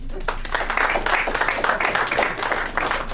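An audience claps in answer to the question of who is a heterosexual man who has gone to a strip club with male friends, a steady dense patter of many hands at a moderate level with a few voices mixed in beneath the applause.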